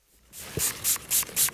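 Short, hissy bursts of fox urine being sprayed onto a wick, about four quick squirts in a steady rhythm, bright and breathy with no one talking.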